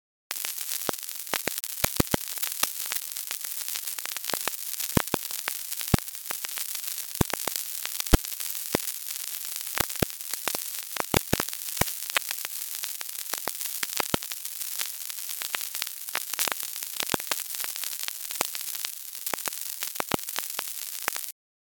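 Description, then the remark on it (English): Sonified internet traffic from three weeks of May 2020 lockdown, rendered as continuous sizzling static, a dense hiss crowded with sharp crackles and pops scattered irregularly throughout, steady in level with no voices. “Finally, here is 3 weeks of glorious May 2020 lockdown traffic.”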